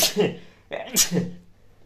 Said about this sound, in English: I'm going to sneeze.